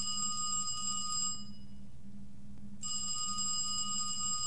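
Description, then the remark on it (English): A telephone on Mother Hen's line rings in two long bursts separated by a short pause, a bright, steady trilling tone over a low background hum, with no one speaking. “That's Mother Hen's line.”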